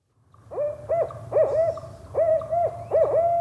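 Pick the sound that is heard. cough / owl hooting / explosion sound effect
owl hooting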